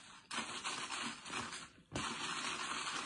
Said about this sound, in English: All right, so there's a little line in the cup. So I'm just filling it up to the fill line. Just kind of, I'm going to mix it.